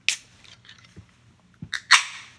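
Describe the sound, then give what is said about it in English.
A can of Key Billy, a drink from Lakeland, Florida, cracks open with a sharp snap and brief hiss, followed after a pause by a soft click and a louder, fizzing burst. No one speaks. “All right, let's give it a pop, shall we?”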